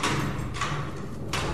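A heavy prison cell door on Christmas Island slides open, a grinding metallic scrape that comes in a few rough bursts over a low, steady rumble, with no voices.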